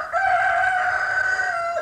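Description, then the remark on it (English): A single rooster crows loudly, one long sustained cock-a-doodle-doo held steady for nearly two seconds with no talking around it. “The Secretary of Agriculture got involved, telling everyone, "The roosters of America are ready to do their duty."”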